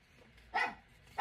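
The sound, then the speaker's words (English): A dog named Dobby barks twice, sharp, with a short pause between the two loud barks and near silence around them. “Man, this dog is so needy.”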